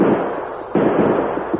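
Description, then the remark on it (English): Gunshots in a staged radio shootout: loud, sharp cracks, one right at the start and another partway through, each leaving a rough, sustained noisy rumble. No one speaks. “We hit him, Mogar, but he's shooting back.”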